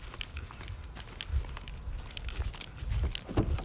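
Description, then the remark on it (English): Someone gets into a car at night and locks the doors: shuffling and rustling with several soft thuds and sharp clicks spread over a few seconds, no voices. “So now, I just got in the car, and I'm locking myself in here, just in case, like, anyone runs up to the, like, window, I can jump out.”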